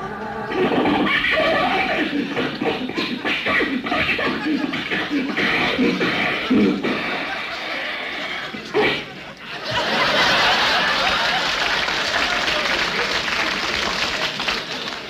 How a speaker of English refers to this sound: The motor sounds as though it's going from bad to worse. Sounds like it's going from here to eternity.